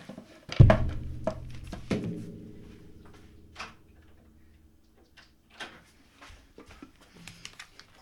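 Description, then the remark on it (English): A door is opened to let a cat in: a heavy thunk and a second knock that rings out briefly, followed by a few faint clicks and small rattles amid quiet. “Just a moment, I have to open the door for my cat.”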